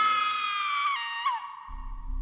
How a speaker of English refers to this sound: Then finally, I let out a blood-curdling scream.